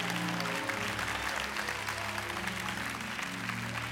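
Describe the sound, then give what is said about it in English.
An audience claps hands in a steady, dense wash of applause, loud and sustained, with organ or keyboard tones holding low notes underneath, clapping to give God praise. “And if you believe it, clap your hands and give God praise right now.”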